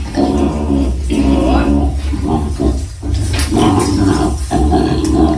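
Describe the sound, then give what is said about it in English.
A koala bellows loudly as it is taken out of a tree in Australia, a deep, rasping, pig-like grunting roar that keeps going in long surges with only brief breaks for breath. “This is actual audio from Australia of them taking this koala out of the tree.”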